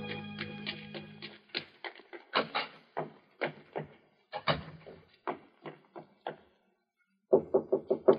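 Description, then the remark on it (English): A woman knocking on a wooden door: after a stretch of scattered thumps and clatter and a brief pause, five quick, firm raps land in a tight, even burst at the end. No one speaks. “I waited for her knock.”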